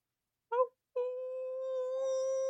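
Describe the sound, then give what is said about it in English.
A person imitates a coyote howling in the distance in a desert: a short yip, then a long, steady howl held for well over a second, clear with no other talk. “There's a coyote in the distance.”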